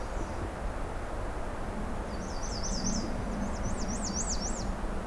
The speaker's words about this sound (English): Oh, it's black and white warbler, that one.